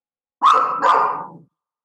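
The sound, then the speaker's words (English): A dog lets out two quick, loud barks in close succession, the second trailing off into a rougher tone, with no voices around. “That's what you get for bragging about your dog.”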